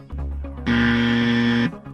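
A quiz game buzzer, hit quickly by a contestant, blares once, a loud, harsh, steady tone lasting about a second, after softer low tones at the start. No one speaks.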